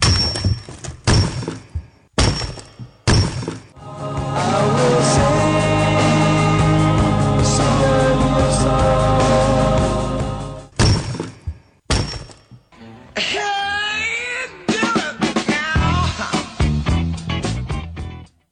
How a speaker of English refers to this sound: And once again, that is the sound of rock cracking.